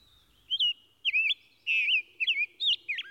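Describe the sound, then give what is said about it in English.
A songbird with a large, heavy beak and a rose-pink breast sings from a tree, a lively series of short, bright whistled phrases, five or six bursts in quick succession, clear against a quiet background. “As I come up under the tree, he casts his eye down at me, but continues his song.”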